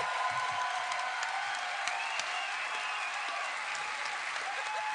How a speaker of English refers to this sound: It's a little misleading, but I'll take the applause. Thank you.